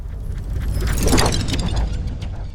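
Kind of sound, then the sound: sound effect, sliding door opening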